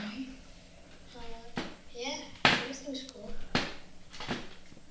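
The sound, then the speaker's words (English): A chair creaks and knocks several times, with short squeaky groans and sharp thumps as someone shifts around trying to get comfortable. “It's not a ghost, guys. That's my chair.”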